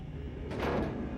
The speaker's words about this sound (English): And the next shot is another dark shot where the door opens almost as if it was from that other shot preceding it.